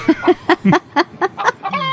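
Chickens clucking in a quick, steady run of about eight short, bright clucks, ending in a slightly drawn-out call, with no talking.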